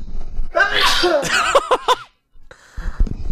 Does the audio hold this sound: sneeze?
yes